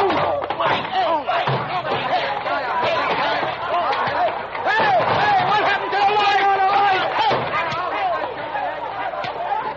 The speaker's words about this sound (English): I thought it was a pretty good fight. Well, your tactics are a trifle dirty.